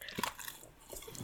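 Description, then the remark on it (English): A single quick, soft sip of Fanta soda: a brief wet slurp near the start, then faint liquid and mouth sounds trailing off, with no one talking. “I'm going to try my third sip of Fanta.”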